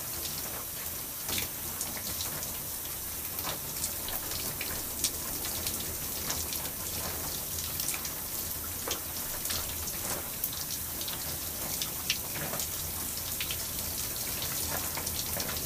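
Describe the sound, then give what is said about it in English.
Water runs steadily in a continuous hiss, like a shower spray, rinsing shampoo out of hair and scalp, with scattered small splashes and drips over nearly sixteen seconds and no voices. “Alright, so I'm about to begin to rinse out the shampoo I just applied on my scalp.”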